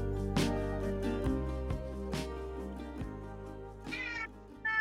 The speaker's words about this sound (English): Whose cat's meowing back there? Yeah, that's the elder statesman back there. It's like our cat in the morning, because he has to stay in the basement or else he scratches at everything in the middle of the night.